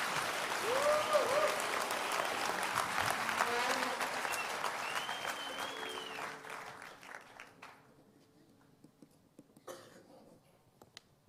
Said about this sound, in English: Clap your hands for the Lord if you can.